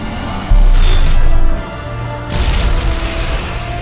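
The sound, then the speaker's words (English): A huge, booming video game explosion erupts, blowing up everything as the Normandy flies away, with a deep low-end roar and crackling debris, then a second rumbling surge swells as the blast continues, loud and sustained with no voices. “Alright, so there's a massive explosion blowing up everything, and the Normandy is flying away.”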